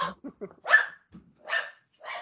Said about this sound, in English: It's hard for me to go for a whole interview without them doing that. It just demonstrates what awesome people we are. Our dogs love us. If you do have dogs who are now running around the house because they heard other dogs, I apologize.